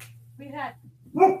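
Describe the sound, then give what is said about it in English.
A dog gives two short barks a moment apart, the second louder and sharper, over a steady low electrical hum. “I don't, was that your dog?”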